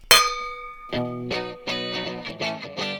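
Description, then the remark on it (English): A single bright clink of wine glasses in a toast rings out and fades over about a second, then a rhythmic musical tune with repeating pulses starts up. “Cheers to that.”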